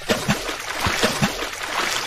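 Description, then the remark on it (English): Several quick water splashes in a row, a rhythmic series of sploshes over a steady background of running, churning water, moderately loud. “with multi-sploosh for the multi-sploosh.”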